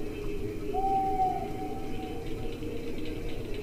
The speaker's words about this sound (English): There are those in the forest. Nocturnal owls are hooting. It's the proof that nobody is in the forest.